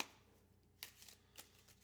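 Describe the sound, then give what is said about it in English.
Playing cards being shuffled for a hand of a card game, heard as two short, soft riffling bursts with quiet background noise in between and no one talking. “Wow, that wasn't even a shuffle.”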